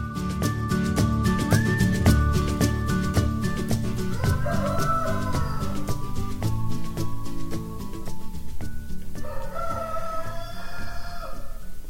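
A flock of chickens clucks and squawks continuously at West Kidland Farm at 5:15 in the morning, with roosters crowing over the busy chatter several times, loud and layered, with no voices.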